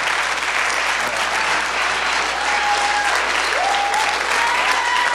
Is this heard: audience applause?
yes